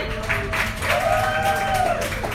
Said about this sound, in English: I need to hear you guys cheer real quick because you guys are being too quiet. Let's get a round of applause and get everybody going.